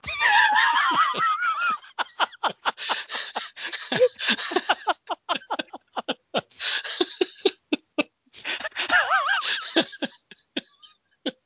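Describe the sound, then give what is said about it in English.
A voice imitates men screaming, letting out wavering, high-pitched "woo" whoops at the start and again near the end, separated by a run of quick, breathy laughing bursts. “I noticed some very adult themes in it, including Helen Mirren as a Jack the Ripper prostitute, some scenes of men screaming, "Woo!"”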